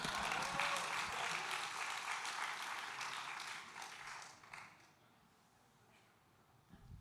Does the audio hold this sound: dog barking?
no